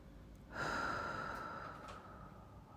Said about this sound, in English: And then breathing out, I am free.